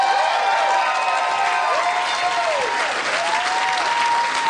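Sustained loud applause from a live crowd, a dense steady wash of clapping mixed with whoops and cheers, with high whistles gliding up and down over it throughout.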